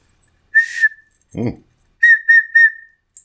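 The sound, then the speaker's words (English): A shrill whistle is blown: one sustained blast, a brief low buzzy sound, then three quick, loud toots in a row. “I have a whistle.”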